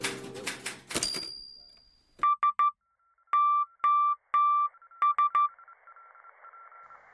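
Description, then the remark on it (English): Steady mid-pitched electronic beeps tap out SOS in Morse code: three short, three long, three short, after a brief burst of noise and with a faint hum trailing at the end. “Yes, if you were listening and wondering what that annoying beeping sound was towards the end, it was indeed an SOS type of emergency Morse code.”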